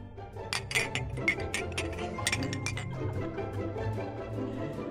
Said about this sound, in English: All right. Let's do the clinking thing so that everybody can hear it. Cheers.